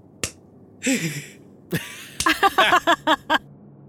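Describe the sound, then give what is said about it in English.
A short run of light, half-hearted hand claps, about eight soft slaps in a loose, uneven rhythm, preceded by a sharp snap and a brief vocal sound. “Weak clap.”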